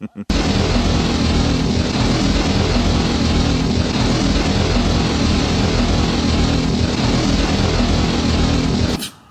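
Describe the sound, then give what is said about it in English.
A motorcycle engine roars steadily for about nine seconds, a loud, constant low growl with a rough, buzzing texture and no clear revving changes, cutting off abruptly at the end. “Not really distinctive. I mean, not, you know, whatever. Just a motorcycle, but let's hear it.”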